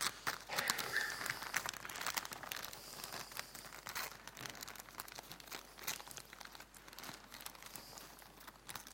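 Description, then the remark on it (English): Continuous crinkling of a sweet's paper wrapper being unfolded and handled, with dense papery crackles and small rustling bursts throughout, no voices. “And can you save me the paper?”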